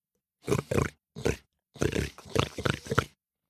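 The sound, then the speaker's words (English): A person imitates a pig, making a series of grunting, snorting noises in short bursts—two quick ones, a pause, then a longer run of rhythmic grunts, fairly loud. “A pig grunting.”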